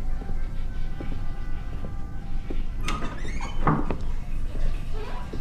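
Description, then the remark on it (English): A door is handled while someone checks the doors at the end of a long hallway down the stairs to the bathrooms in a bar, with a couple of clunks and a creaking swing near the middle, over a steady low indoor hum and some faint background voices. “Longish hallway. 3 doors near the end.”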